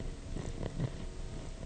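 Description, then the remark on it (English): A cat purrs steadily, a low continuous rumbling with a soft pulsing rhythm, heard alone without any talking. “The thing was purring.”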